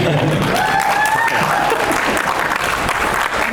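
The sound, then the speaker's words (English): An audience applauds steadily as a guest is introduced, dense clapping filling the whole few seconds at a loud, even level, with a brief whistle or cheer rising above the noise early on. “we could have like a separate round of applause for my hair.”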